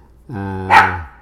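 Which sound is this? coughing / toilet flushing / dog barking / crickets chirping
dog barking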